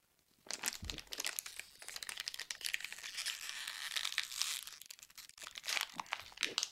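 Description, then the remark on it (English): A plastic water bottle crinkles and crackles continuously for about six seconds as someone chugs water from it, a dense, irregular stream of sharp crunches with no talking. “I can chug a water bottle.”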